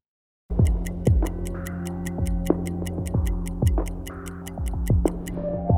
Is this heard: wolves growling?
no